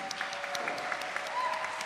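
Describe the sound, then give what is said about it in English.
An audience at the New Voice Awards claps for the Amplify team steadily, a dense, continuous patter of many hands at a fairly even level throughout, with a faint murmur of voices underneath. “Can we give a big, big round of applause to the New Voice Awards Amplify team?”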